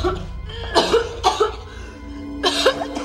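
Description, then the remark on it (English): A woman coughs repeatedly in the other room, three harsh bursts spaced about a second apart, over a low steady background hum, with no talking. “And then his wife just keeps coughing in the other room.”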